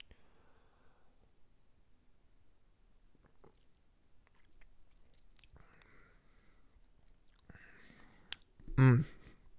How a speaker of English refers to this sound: So I'm gonna give it one last sip, and then we're gonna give it a score.